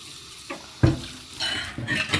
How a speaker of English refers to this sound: I'm washing dishes now.